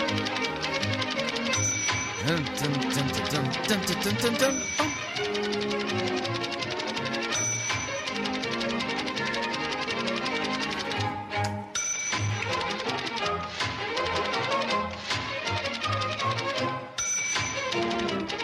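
Fast, busy instrumental music races along, dotted with sharp typewriter-like clacks and bright bell dings that recur every few seconds. No one speaks.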